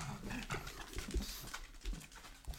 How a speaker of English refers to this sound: Every morning, our older pug wakes me up about 3 a.m. He has dementia, poor fella, and he'll just start barking randomly at shapes and shadows in the house.